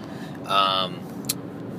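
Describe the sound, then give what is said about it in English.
Steady low road rumble of a car cruising on a highway behind a gas truck, heard from inside, with a brief high tonal whine in the middle and a single sharp click near the end. “I'm on the highway. I'm behind a fucking gas truck.”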